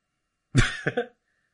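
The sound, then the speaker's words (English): A gruff throat clearing: one rough burst followed by two quick guttural pulses, loud and raspy, then silence. “clear my throat.”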